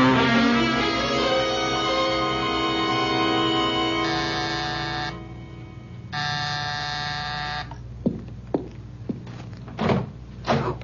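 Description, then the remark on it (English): A long electric buzzing drones, pauses, and buzzes again, then a door is pushed shut with a few sharp thumps and knocks. No one speaks. “Wait a minute, Nikki. Don't close the door. Let me in.”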